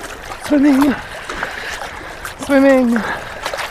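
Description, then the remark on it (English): Water sloshes and splashes steadily as a person walks down into very cold water and starts swimming, broken by two short, voiced exclamations like gasps from the cold. “And swimming,”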